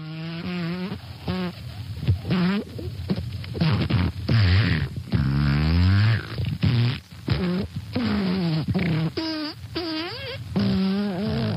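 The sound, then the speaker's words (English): A voice blows a long series of wet, buzzing raspberry noises, fart-like, with wavering, sliding pitch and moaning tones, carrying on almost without pause for several seconds. “Yeah, he seems to be making a sort of raspberry or fart sound right now.”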